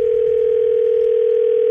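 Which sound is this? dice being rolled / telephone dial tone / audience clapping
telephone dial tone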